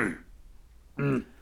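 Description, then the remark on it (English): A short throat clearing sound effect, with a brief rasp at the start followed by a louder, voiced, harmonic grunt about a second later, loud against a quiet background with no talking. “I always had to clear my throat there.”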